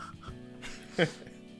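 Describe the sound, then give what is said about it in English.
A dog lying on a bed lets out a single short, high whimpering yip, a quick sharp burst against faint background murmur. “I don't know what the dog just did there.”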